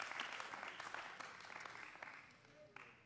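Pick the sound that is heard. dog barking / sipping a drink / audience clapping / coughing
audience clapping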